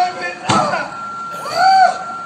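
A single heavy, dull thud of a man's head striking concrete, short and loud, set against a steady background hum, followed by a brief rising-and-falling vocal sound.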